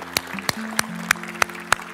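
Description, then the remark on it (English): A church audience gives God a round of applause after a prayer at a morning service: steady, evenly spaced hand claps, about six sharp crisp hits in two seconds, over a sustained low droning tone, with no talking. “Can we give God a round of applause this morning?”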